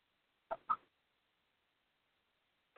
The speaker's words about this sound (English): Ooh! Yeah, you're a bird. I see you, Barney Bird.